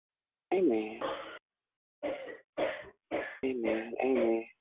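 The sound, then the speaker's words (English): A person coughs hard in a series of harsh, throaty bursts, some run together and some separated by brief pauses, loud. “Who about to cough up their heart?”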